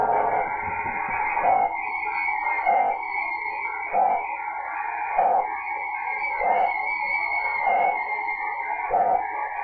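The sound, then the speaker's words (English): A PACTOR digital radio signal, probably at 10.142 in the 30-meter band, a mode using error correction: steady, buzzy mid-pitched warbling pulsed into regular bursts a little under a second apart, with a faint hiss beneath and no voices. “So if you click on the PAC door signal, you'll hear it.”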